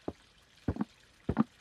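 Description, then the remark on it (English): Three knocks on a wooden door, each a dull thud with a quick double rap in the second and third, spaced evenly apart with quiet in between. “Someone just knocked at the door.”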